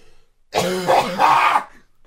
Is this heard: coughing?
yes